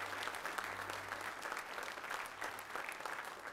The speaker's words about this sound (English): Can we give him a hand clap of praise for him?